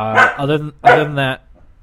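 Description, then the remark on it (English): Two drawn-out, barking sounds, each lasting under a second with a short gap between, probably a person's voice imitating a dog's woofs rather than a real dog. “Other than that, he said, sorry, I had to pause it because the dog was barking.”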